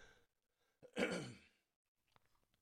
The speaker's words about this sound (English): So I'm going to clear my throat again. One second.